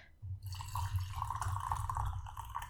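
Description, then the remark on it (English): Bird King De Hong Pao red tea pours steadily into a cup, a continuous trickling splash that starts after a brief quiet moment and keeps going with a bubbly, rising fill. No one speaks. “Oh, listen to that. So I'm just having a little pour”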